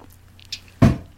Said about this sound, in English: Oh, my chair is popping.